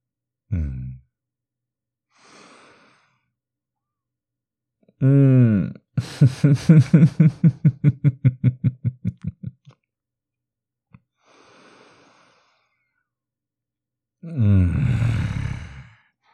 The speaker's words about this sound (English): You sound so good. When you moan for me, when you let go, that breathing, yeah. Yeah, you do. You sound so fucking good for me.